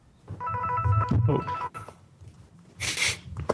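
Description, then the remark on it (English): A cell phone ringtone chimes in bright, repeating tones for about a second from inside a jacket pocket, followed by rustling and a short breathy burst like a sneeze or snort. No one speaks. “No, my phone's just started ringing.”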